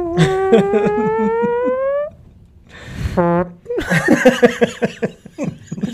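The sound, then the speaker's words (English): A long, drawn-out fart noise made by a voice, buzzing and slowly rising in pitch for about two seconds, then a brief squeaky blurt and bursts of laughter. “I went with a long fart.”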